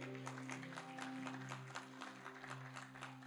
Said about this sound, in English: Let's clap for Jesus.